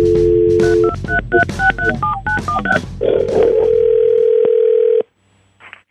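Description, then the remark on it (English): A steady dial tone, then a quick series of touch-tone beeps as a cell phone number is dialed, followed by a long continuous ringing tone that cuts off abruptly. Loud, with no voices. “I know I'm calling your cell phone and this is rather unconventional, but I'm calling on behalf of one of my clients.”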